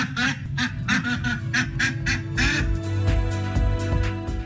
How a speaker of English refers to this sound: Well, quack, quack, quack, quack, quack.